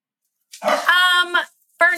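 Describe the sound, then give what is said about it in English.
Dogs barking and yelping playfully as they play-fight, one running around with the zoomies: a drawn-out, whiny bark followed after a short pause by another sharp one, with no talking. “I didn't have dogs at the time, but I also, they fight. They're like, he got the zoomies.”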